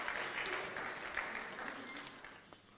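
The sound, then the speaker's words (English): A roomful of people clapping steadily, a dense, continuous patter of applause that holds even throughout before gently tapering off toward the end. “Let's give them a round of applause for all they've shared.”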